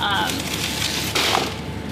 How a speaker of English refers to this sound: So we can open up the freezer here, which is always a bit of a pull because it kind of seals itself shut real tight. And you can see all of the ice kind of everywhere along the freezer.